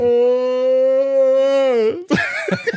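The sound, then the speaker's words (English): A person lets out a long, loud, drawn-out vocal yawn, the steady groaning tone holding for a couple of seconds before breaking into breathy, uneven exhales. “When I am knackered, I yawn a lot.”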